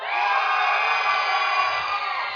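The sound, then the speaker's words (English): A loud crowd of Gators fans at a church service erupts in sustained cheering and shouting for their college football team on cue, a dense wall of many voices yelling at once that holds steady for a couple of seconds with no speech standing out. “So when I say Gators, you cheer for your team.”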